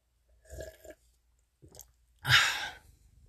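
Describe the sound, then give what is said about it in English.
Quiet mouth sounds of someone taking a sip of water and swallowing, with a couple of short wet clicks, followed by a louder breathy exhale after the drink. No talking. “Oh, let me get a sip of water before I talk about my last thing.”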